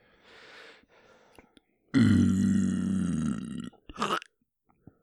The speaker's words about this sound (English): Why did you sound like a cat at the end of that burp? Hairball.